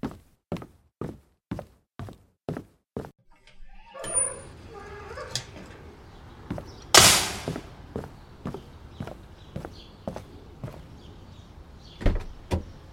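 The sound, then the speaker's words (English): A car door opens with a loud latch clunk partway through, following a steady run of sharp, evenly spaced ticks; outdoor background noise rises and the ticking continues afterward. No one speaks. “Thank you for opening the door.”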